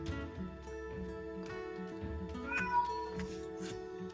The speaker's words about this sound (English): My cat is just wanting attention. I'm sorry. She's like, attention, human.